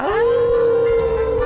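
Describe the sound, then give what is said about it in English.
Voices let out a loud, sustained howl together, howling at the Moondog after a count of three, rising in pitch and then holding a long steady note, mimicking dogs howling. “Now we all, now we going to all howl at the Moondog on the count of three.”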